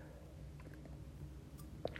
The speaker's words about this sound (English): Sorry, I just took a sip of my tea